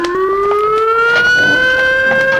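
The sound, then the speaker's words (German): An alarm siren wails steadily in the afternoon during a robbery of a money vault, a loud high-pitched tone slowly rising in pitch over a couple of seconds, with no voices and a faint rumble underneath. “Die Alarmsirene. Das hört sich nach einem Überfall an.”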